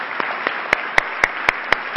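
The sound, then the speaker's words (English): A round of applause for veterans and those with family members who have served, for Veterans Day: a wash of crowd clapping with sharp, evenly spaced claps standing out about four times a second, growing louder and steadier partway through. “And those who have family members who have served, we want to give you a rounding applause.”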